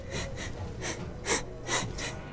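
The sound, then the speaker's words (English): A voice imitates a character sniffing the air with six quick, breathy inhales in an uneven rhythm, the fourth and fifth slightly louder, all fairly faint with no talking. “Then he's like sniffing the air now.”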